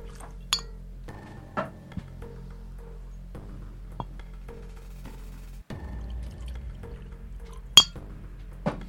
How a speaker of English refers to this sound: There you go, good sir. And cheers. Cheers. Glasses are great. We should probably put a poncho on the mixer. We cheers like whiskey comes out and like splashes on the mixer.